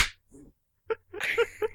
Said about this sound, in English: All right, ready? No. Three, two, one, clap.